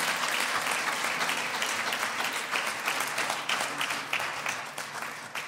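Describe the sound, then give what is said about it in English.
An audience applauding together in the evening, giving the Lord a hand clap of praise, a dense, sustained wash of many hands clapping at steady loudness, with no talking over it, tapering only slightly toward the end. “Before you take your seat, why don't you give the Lord a hand clap of praise for this evening?”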